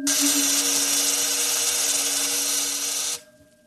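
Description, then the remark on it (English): A loud, steady electric buzzing hum, a low droning tone layered with bright hiss, holds evenly for about three seconds and then cuts off abruptly as an activated electric field, vibrating at the cycloid rate set on crystals, discharges. No one speaks. “The field is vibrating at the cycloid rate set on the crystals. All right, it's ready for discharge.”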